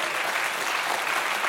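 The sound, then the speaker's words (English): An audience claps together in a dense, steady wash of applause for a panel at the close of an evening event, a fairly loud, even patter of many hands with no voices standing out. “I think we should give our panel one more round of applause and thank them.”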